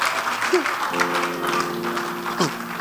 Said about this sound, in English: Give the Lord a mighty clap of praise.